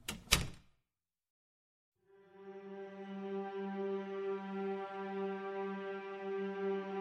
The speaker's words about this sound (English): When the door shut, we were once again drowned in darkness.